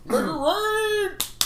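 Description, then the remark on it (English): A drawn-out, rising-and-falling vocal whoop gives way to two sharp slaps in quick succession, imitating stacks of money being smacked down. “That's them just slapping the money spider all money.”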